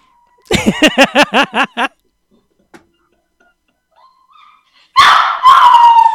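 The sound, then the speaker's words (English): A dog in a hallway lets out a quick run of about seven short, high whining yelps, falls quiet, then breaks into loud, drawn-out whimpering howls. “there's another dog in the hallway.”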